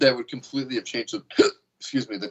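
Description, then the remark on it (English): A person talks steadily, and partway through a single abrupt hiccup cuts in, fairly loud, followed by a brief pause before the talking resumes. “Did you just hiccup?”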